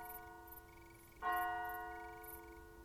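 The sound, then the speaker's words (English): A distant clock bell tolls once as it strikes midnight, its deep strike ringing out and fading slowly over the lingering hum of earlier peals, with a faint, steady ticking in the background. “He listened intently as the preliminary peals were sounded and the clock finally tolled midnight.”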